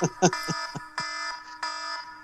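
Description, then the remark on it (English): An electronic timer alarm marking three minutes beeps loudly in repeated harmonic tones, a few sustained bursts with short gaps, while a voice briefly talks underneath at the start. “I did say there was a timer running.”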